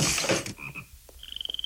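animal, toads croaking

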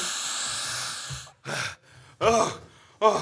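human body sound, heavy panting

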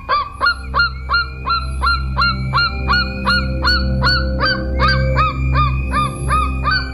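bird, golden eagle call

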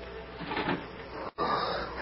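household object, door creaking slowly open

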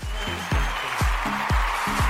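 crowd, applause

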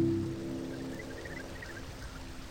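nature, flowing river water

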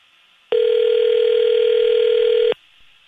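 signal or alarm, telephone dialing and ringing

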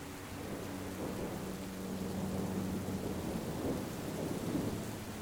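nature, thunderstorm with rain

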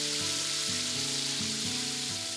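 food or drink, chicken frying

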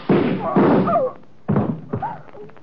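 impact, gunshots

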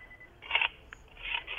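signal or alarm, phone call connecting tones

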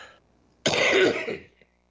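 human body sound, cough

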